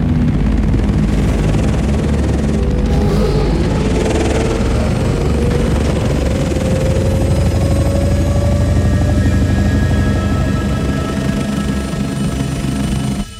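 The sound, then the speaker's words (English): A dragonfly-like ornithopter aircraft flies, its loud, steady whirring and buzzing filling the whole stretch, with a droning tone that slowly rises in pitch. “There's nothing more powerful than an insect. I think that if a fly was the size of a helicopter, it could grab a truck, or I don't know.”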